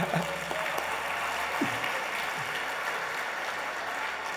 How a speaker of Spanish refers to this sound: Así que dele un aplauso al Señor.